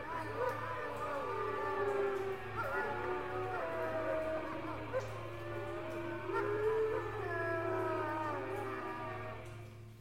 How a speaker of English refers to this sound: Those howling creatures aren't coming in yet, and if they do, I suspect there's some other mechanism at play here.